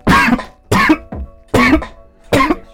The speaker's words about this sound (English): Coughing into people's ears, bro.